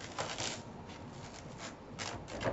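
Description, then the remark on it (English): Crisp, dry crackling of a Detroit-style pizza's cheese crust being cut into sticks with a rocker cutter, a steady series of crunchy bursts with a few louder surges, and no voices. “Listen to that cheese crunch.”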